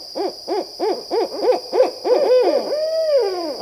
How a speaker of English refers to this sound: Their signature hooting sequence has been memorably described as "Who cooks for you? Who cooks for you all?" But this is just one of more than a dozen barred owl calls, ranging from a siren call to a wail to a wonderfully entertaining monkey call.